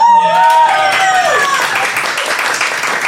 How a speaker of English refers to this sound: Audience, applaud if you think you should just stay where you are and get the points.